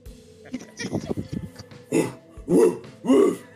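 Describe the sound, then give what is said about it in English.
After some brief talking, a person gives three loud, deep barks in a steady rhythm, imitating the bark of Princess, a Great Dane. “Princess is a Great Dane, obviously. A bow wow.”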